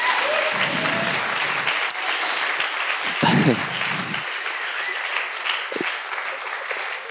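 Sustained audience applause, a dense, steady crackle of many hands clapping that fills the whole clip at an even loudness, with a few brief voice-like murmurs underneath.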